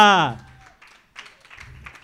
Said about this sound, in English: Those claps seem just less and less enthusiastic.